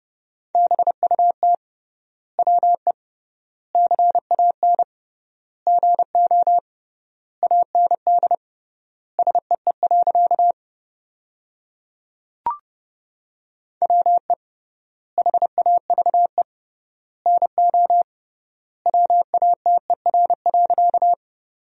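Morse code at 30 words per minute with triple word spacing, sending sentences made from the top 100 words. A steady mid-pitched tone is keyed rapidly into short and long beeps, grouped into words with clear pauses between, plus one sharp click midway.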